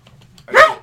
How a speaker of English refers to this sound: My dog's really excited about this. There's dogs outside and Bella does not like them.